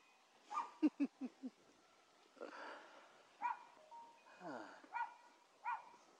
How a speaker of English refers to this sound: So, that is a little dog. It is a little dog. I didn't see him until. He was, that tire was his background. It is a chihui hui.